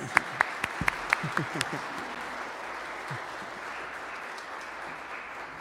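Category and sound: crowd, round of applause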